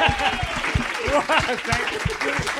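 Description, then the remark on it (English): An audience near the end of a show breaks into steady applause for Dave Thornton and Luke McGregor, dense overlapping claps filling the whole clip at an even loudness, with a few voices and brief cheers rising through the clapping. “Please give a round of applause to Dave Thornton and Luke McGregor.”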